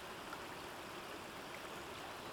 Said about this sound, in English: A noise of rushing water soon came to their attention, but it wasn't the babbling noise of a stream or the flow of a river. It was something altogether different.